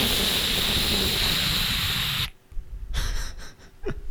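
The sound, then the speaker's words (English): A voice imitates static with a loud, steady breathy hiss lasting about two seconds, cutting off abruptly and followed by a few shorter, softer puffs of rushing noise. “you get anxious thoughts, and then a lot of times you just get, like, static.”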